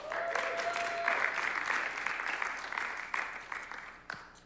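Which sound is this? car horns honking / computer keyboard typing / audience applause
audience applause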